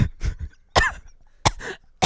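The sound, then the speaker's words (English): A series of harsh coughs in quick bursts, about five or six abrupt hacking sounds with short gaps between them, loud and dry, with no talking. “It's a cough.”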